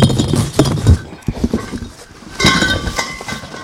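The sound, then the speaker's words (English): Loose spare metal bike pieces clink and clank together in a jumbled, irregular series of sharp knocks, with brighter ringing clinks near the end as they are shuffled around. No one speaks. “And so when you drive down the driveway, there's a lot of clinking and clanking.”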